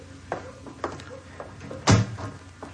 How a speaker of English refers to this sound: Close the door, Chester.